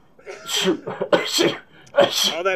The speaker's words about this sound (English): All that fake coughing made me really cough.